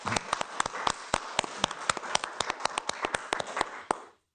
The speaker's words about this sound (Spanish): Démosle un fuerte aplauso a ellos desde nuestros hogares.